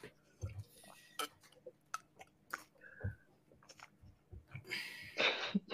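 Quiet clinks and taps of a cup and dishware, with soft slurping sips and small mouth sounds, ending in a brief louder rustling burst.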